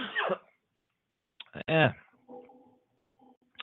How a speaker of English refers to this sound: Got a little cold here for some reason. I'm coughing. Maybe I need to get a drink of water.